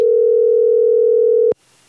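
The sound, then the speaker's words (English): A steady, loud telephone tone at the start of a recorded phone call holds at one pitch for about a second and a half, then cuts off abruptly, leaving faint line hiss. “But in case you haven't, I thought we would play one of the phone calls from last year just to kind of set the mood.”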